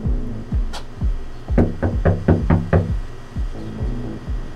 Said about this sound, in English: So that's where we start, knocking on doors, with a photo of Sasia and Anish in one hand and a microphone in the other.